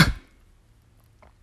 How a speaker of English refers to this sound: Uncle Vernon coughed again.